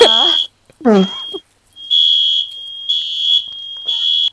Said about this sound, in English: And that would be my fire alarm. Oh no! Oh no! Which means I have to evacuate.